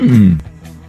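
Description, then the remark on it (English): A person makes a loud, short vocal imitation of a horse neigh, a single falling whinny-like cry lasting under half a second, followed by quiet. “Did you just neigh?”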